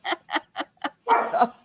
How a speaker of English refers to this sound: That must be your dog, Mary.